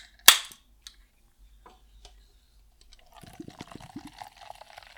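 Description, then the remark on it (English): A sharp pop of a sparkling water can tab snapping open, a brief hiss, then a few quiet clicks before steady fizzing and bubbly pouring noises fill the last two seconds. “Ah, you hear that?”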